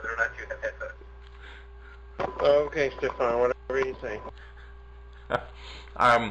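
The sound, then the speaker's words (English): A person talks over a thin, phone-like call line while a fainter, smeared copy of the voice echoes back behind it, with a steady electronic hum running throughout. “So we can all hear the echo.”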